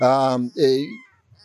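A pheo duck, a local bird in a New Zealand forest, flies past giving two loud, harmonic calls in quick succession, the first longer and steady, the second sliding downward, before fading into near silence.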